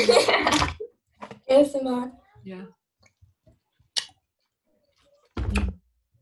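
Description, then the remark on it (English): Close, wet squelching bursts of someone chewing a juicy, slightly moldy orange right next to the microphone, a few separate bites with quiet pauses and a brief muffled vocal murmur between them. “Should I chew it by the camera?”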